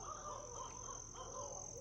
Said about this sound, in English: I was flirting with this barred owl for over an hour. I think she loves me. This big old swamp puppy sleeping. Oh, let's my God. Try not to wake him up. Then the owl started going ballistic and woke him up.